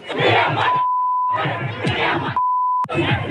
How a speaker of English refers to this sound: 1,000 miles away, another huge crowd in another Muslim area. As the police stood by, they screamed insults that are too vicious to broadcast.